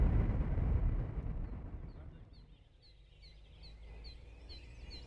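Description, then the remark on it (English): Songbirds begin a dawn chorus around 5:30 in the morning as the sky starts to glow, with short high chirps repeating at a steady pace, following a few seconds of low rumbling noise. “The dawn chorus is just starting to kick in.”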